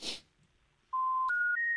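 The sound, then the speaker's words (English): A short click, a pause, then three steady electronic telephone tones stepping upward in pitch, each held briefly and evenly loud, as a phone call is placed from the recent calls list. “Now we can make a phone call.”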